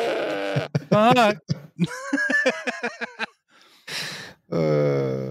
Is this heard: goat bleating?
yes